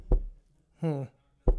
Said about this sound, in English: Oh, hold on, that's the door.